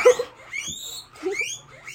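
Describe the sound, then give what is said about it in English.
Pet guinea pigs squeak in a run of high, rising wheeks, several shrill chirps in quick succession, moderately loud, with no talking over them. “Sorry, those are my guinea pigs.”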